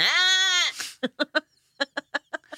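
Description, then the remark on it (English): A person imitates a goat: one long, wavering bleat followed by a run of short, stuttering bleats, fairly loud, with no other talking. “it's a good goat. It's not goat bad, impression.”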